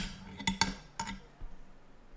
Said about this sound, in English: I accidentally knocked my pop filter off.